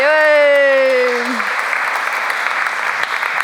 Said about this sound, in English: Go on, another round of applause. Yeah, lovely.